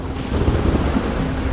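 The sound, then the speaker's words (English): Hurricane Andrew, nearing the shore of southeast Florida with its center about 40 miles due east of Miami, roars steadily, with deep rumbling thunder and heavy rain under a constant wash of wind noise, loud, with no voices. “Hurricane Andrew now nears the shore of southeast Florida.”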